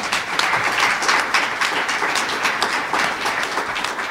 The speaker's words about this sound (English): Warm round of applause, please.